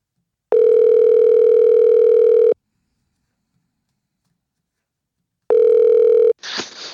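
A loud, steady telephone tone hums for about two seconds, then silence, then the same tone returns briefly before cutting into a short burst of crackly line noise as a phone call is placed. No one speaks.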